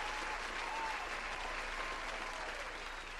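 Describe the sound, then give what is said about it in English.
A steady wash of audience applause for Charlamagne, many hands clapping at once in a dense, even roar that holds at the same level for the whole few seconds, with no voices standing out. “So round of applause for Charlamagne.”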